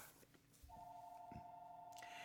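household object, office telephone ringing

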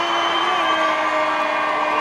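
crowd, crowd cheering and applauding

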